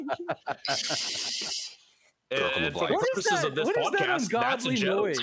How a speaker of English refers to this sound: Hang on a second. What is that ungodly noise? It's like a growling. It's or... beans. It's beans snoring. It's so cute.